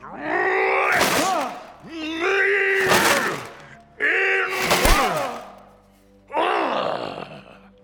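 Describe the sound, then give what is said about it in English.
A door is rammed again and again: four heavy thuds in a steady rhythm, each paired with a loud, strained groan of effort, with short pauses between blows. “Now open this door, or I will break it down.”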